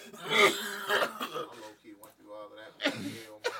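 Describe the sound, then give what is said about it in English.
A quiet, low-key cough made of a few short, muffled bursts, with some throat-clearing rasp and voiced noises around it. “A little low key cough?”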